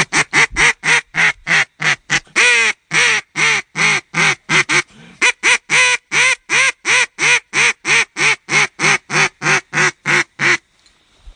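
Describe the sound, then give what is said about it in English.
A rapid, insistent run of loud quacks blown on a duck call as a comeback call, used when ducks have flown over and are heading away, roughly thirty sharp evenly spaced notes with a brief stumble midway, unaccompanied by talk. “what is that comeback call? Let's have a listen to it.”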